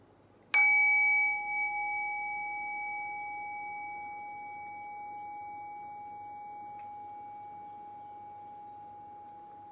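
A single meditation bell is struck once to begin a guided resting meditation, giving a bright metallic attack that settles into a long, steady, pure hum, sustaining clearly for many seconds with no voices.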